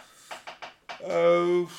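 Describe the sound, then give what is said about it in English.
A chair creaks under a sitting person's shifting weight: a few short, scratchy creaks followed by a longer, drawn-out tonal groan, fairly loud, with no talking over it. “I feel like my chair is about to break.”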